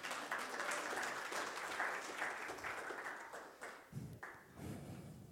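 A crowd in a church applauds steadily, many hands clapping in a dense, crackling wash that holds fairly loud throughout, thinning briefly near the end before swelling again.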